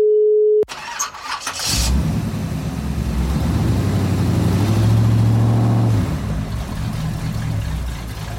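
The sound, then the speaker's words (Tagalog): A car engine cranks loudly and steadily for several seconds without catching, after a brief electronic tone and a sharp starting burst; no one speaks. “Nasiraan ka na ba ng kotse sa daan?”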